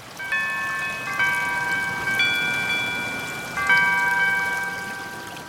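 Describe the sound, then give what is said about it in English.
A Google Pixel phone alarm tone: bright, high-pitched electronic chime notes enter in four spaced steps, each ringing on and overlapping the next, over a soft background hiss with no talking. “And alarms.”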